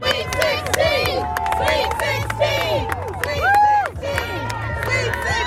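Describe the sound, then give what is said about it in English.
A large crowd of Princeton students, faculty, staff and community members cheers and shouts continuously, bidding farewell to the Princeton men's basketball team as it leaves for its Sweet 16 game against the Creighton Blue Jays. Many overlapping voices, high whoops and sustained yells rise above a steady roar of excited chatter. “Yesterday, a crowd of Princeton students, faculty, staff, and community members bid farewell to the Princeton men's basketball team as they set off for their Sweet 16 game against the Creighton Blue Jays of Omaha, Nebraska.”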